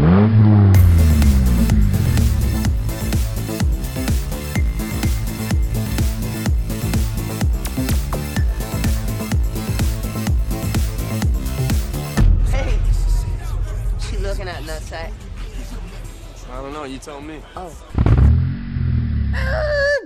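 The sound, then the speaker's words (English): A loud engine roars and revs steadily for several seconds, then gives way to clattering, chaotic noise and a sudden heavy impact near the end, like a car crash. “Car crash.”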